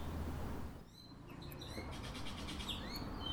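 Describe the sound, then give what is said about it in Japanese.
Sparrows chirp in a garden in quick, repeated bursts of short high tweets, several birds overlapping over a steady low background rumble. “スズメたちのおしゃべり”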